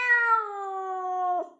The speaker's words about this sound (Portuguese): Desta vez é mesmo um gato? É de facto o meu gato.